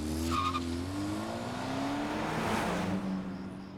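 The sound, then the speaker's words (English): A car engine revs with rising, steady harmonic tones and pulls away, tires briefly squealing as it accelerates off, sustained with no voices; a lone driver is driving off around 2:30 in the morning. “and then drove off alone back to his estate.”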